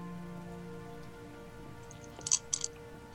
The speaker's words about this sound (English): You sit down and you start to meditate, and it is very easy to do so here as it is very quiet, and all you can hear is kind of the rushing of water and the wind blowing through the mountains surrounding you.